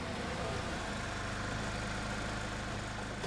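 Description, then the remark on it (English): A car engine idles with a steady, low rumble, unchanging in loudness throughout, with no other sounds standing out; the car has just pulled up at the Buttafuoco house on Adam Road West at 11:30 a.m. “Peter pulled up to the Buttafuoco's house at 11:30 a.m.”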